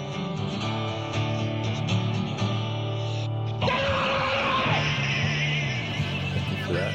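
A rough demo recording of a song with a steady, droning band sound, then a male singer's harsh, strained screaming vocal bursts in about halfway through and carries on loudly over the music.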